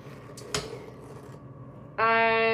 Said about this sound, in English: I am flaying chicken right now.